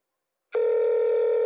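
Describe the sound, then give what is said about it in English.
After a brief silence, the ringback tone of an outgoing phone call starts: a steady, clear electronic hum through the earpiece that holds without a break. No one speaks. “Can you hear it ringing?”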